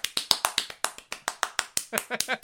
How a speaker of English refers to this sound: It's a lot of clapping.